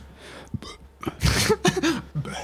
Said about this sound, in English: Little burp into it.